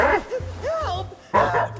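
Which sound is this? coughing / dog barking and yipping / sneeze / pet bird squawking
dog barking and yipping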